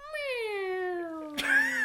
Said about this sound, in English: It sounded more like a cat this time.